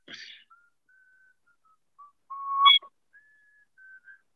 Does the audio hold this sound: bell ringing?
no